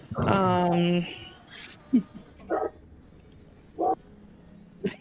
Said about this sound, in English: Please hold while we wait for the barking to stop. This barking brought to you by Sirenscape, because epic games need epic barks.